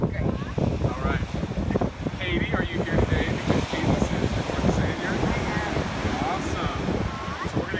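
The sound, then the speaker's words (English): Steady roar of ocean surf and gusting wind buffeting the microphone at a beach during a water baptism, loud and continuous, with faint voices of people talking mixed into the noise. “I want you to see life change fresh again and see how I almost lost her in the ocean waves.”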